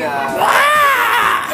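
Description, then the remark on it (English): A person lets out one loud, shrill scream in imitation of a fox's cry. The strained, harmonic wail rises and then falls in pitch over about a second. “It's like he screams. He's like, rah! Can you say what the fox says?”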